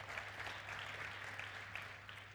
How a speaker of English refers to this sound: I really believe that's worthy of a bit of a clap, I think.